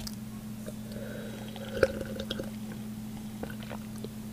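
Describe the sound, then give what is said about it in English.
Quiet sipping of tea: soft wet mouth and slurp noises with one sharper click partway through, all over a steady low electrical hum, with no talking. “Let me take a sip. I might need a sip of tea.”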